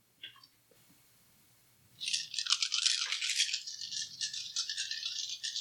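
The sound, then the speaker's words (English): A few faint clicks, then a loud, continuous clattering rattle of a handful of dice being shaken and rolled, lasting several seconds with no voices. “So you'd roll 11. I have 1 left. Can't believe it. This is my last. Do you even have 11 dice over there?”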